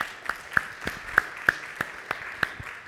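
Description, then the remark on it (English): Applause at a church service for everybody who took part in the morning worship, in a steady, even rhythm, about nine sharp claps at a regular pace over a constant background tone, with no talking. “Big round of applause for everybody that took part in worship this morning.”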